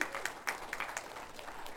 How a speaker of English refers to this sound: If it was somebody you love that you wanted to get saved, you would have clapped a little bit louder, okay?